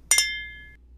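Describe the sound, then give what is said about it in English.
Two wine glasses clink together twice in quick succession in a toast, bright, leaving a clear ringing tone that fades out over about half a second. No voices. “go ahead and grab your drink, grab that glass of water, that glass of wine, that glass of whatever, that cold beer, whatever you like to drink, and raise it up so that we can toast to the first episode.”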